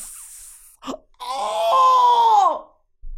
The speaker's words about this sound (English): The Wilhelm scream. That's how I felt in the bathroom.